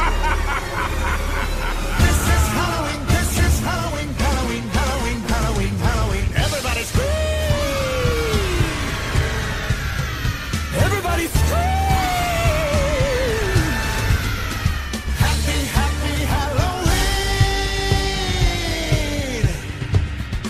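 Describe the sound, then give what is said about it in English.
A crowd of people screams and shrieks together in a Halloween scream-along for about twenty seconds, many overlapping voices sliding up and down in pitch, loud and continuous, with bits of laughter mixed in. “And now, to end our ghostly gathering, we invite you to partake in our favorite Halloween tradition, the scream-along.”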